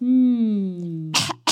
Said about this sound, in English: you really ought to take those pills I gave you for your cough. I ran out, I think.